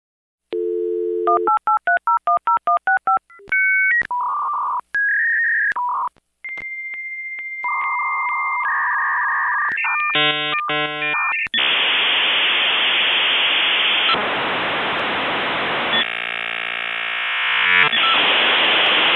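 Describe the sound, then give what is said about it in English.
A dial-up modem dialing: rapid touch-tone beeps, steady tones and warbles, then a loud, harsh hiss and screeching static of the connection handshake, with no one talking. “But we'll be right back after this not, and I repeat, not modem sounds.”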